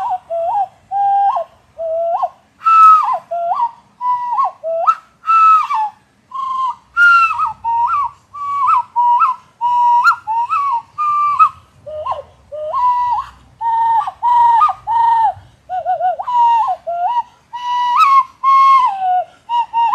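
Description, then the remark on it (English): A hand flute plays a breathy, hooting melody of short, wavering notes in a mid register, phrased in quick bursts with brief gaps, steady and fairly loud with no talking. “That I have to admit is a hand flute.”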